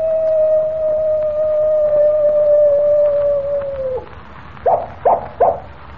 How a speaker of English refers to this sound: Did you hear that? I certainly did, Jimmy. It was a coyote. And here it comes now. Well, I'll be... Why, it's a real coyote.